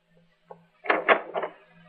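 A door being answered: a faint click, then three quick, woody thumps and rattles in a short burst, set against a low, steady hum, with no voices.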